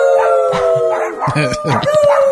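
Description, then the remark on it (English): Two dogs that look like Jack Russell Terriers howl in long, wavering, sliding tones along with a family singing a Christmas song, all loud together, the howls stretching over the voices throughout. “all the family joins in, including the dogs.”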